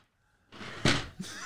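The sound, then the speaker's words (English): A chair seat with a person on it suddenly drops about a foot with a sharp, loud clunk after a brief rustle, followed by a smaller knock and lingering creaky shuffling. “It looked like you dropped a whole foot. Yeah, I went down a whole foot.”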